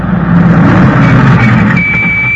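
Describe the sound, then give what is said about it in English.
A heavy cargo truck engine roars loudly on a pier, a dense low rumble filling the air, with a thin high whine rising near the end as it rushes past. “Hey, look out! The cargo truck!”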